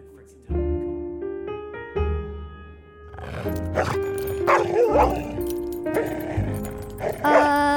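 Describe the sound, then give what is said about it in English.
A dog growls and snarls, a rough, rumbling sound rising in harsh bursts through the second half, following a steady, tonal opening. “Why is he growling at me? None of the other dogs growled at me like that.”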